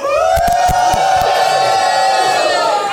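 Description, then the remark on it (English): A live audience, many of them from the Duck Hunters Facebook group, cheers and whoops loudly for about three seconds, with a sustained high voice riding above sharp claps and shouts. The roar stays steady throughout, with no speech. “Many of whom are here, as you can tell.”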